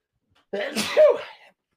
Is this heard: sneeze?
yes